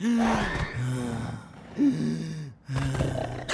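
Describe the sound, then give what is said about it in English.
A voice imitates labored, gasping breathing as a symptom of coronavirus: three long, strained, wheezy breaths in a row, loud, each harsh and drawn out with brief pauses between. “Third, trouble breathing.”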